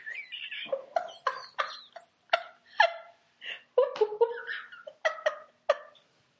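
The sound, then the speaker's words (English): A voice mimics cartoonish birds chirping around someone's head after a blow to the head: a quick string of about fifteen high, squeaky tweets in an uneven rhythm, moderately loud, with a slightly giggly edge and no other sounds. “And he's like, yeah, and then there's the birds? Birds around his head.”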